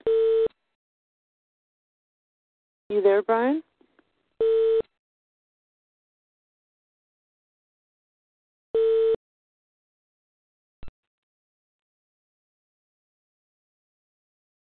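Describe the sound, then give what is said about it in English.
Steady electronic phone-line beeps sound in short bursts, three of them spaced a few seconds apart, with a brief spoken question between them and a faint click near the end. “I heard a couple of beeps, and I was probably talking, there's other people on, but I was probably talking without you there.”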